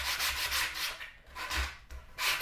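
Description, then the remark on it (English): Sandpaper rasping back and forth along a wooden edge in steady, repeated strokes, each a gritty hiss that swells and fades, with no voices. “Sanding the edge.”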